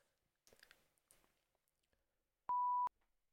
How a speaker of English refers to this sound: There you go. Get the beep in properly.